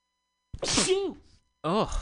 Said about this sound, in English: I'm going to sneeze.